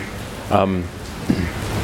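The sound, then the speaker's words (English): Steady rain falls outside, hissing continuously in the background, an even wash of noise from start to finish, with a couple of brief bird calls rising briefly above it. “I wonder if that bird's upset about all this rain.”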